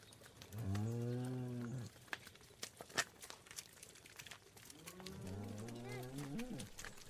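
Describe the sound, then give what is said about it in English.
Two long, deep cow moos rise and fall, one near the start and another near the end, with scattered clicks and rustling in between on an outdoor farm. “I love these cows because, like, whenever you get bored around farms or something, you can always, like, go down to the cows and stuff and have, like, a great crack with them.”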